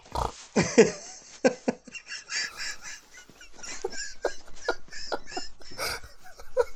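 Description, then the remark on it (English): A series of short, pig-like snorts and grunts, irregular and fairly loud, with a few sharper bursts early on and softer snuffling in between. No speech. “Joan the Sheep, and you snort.”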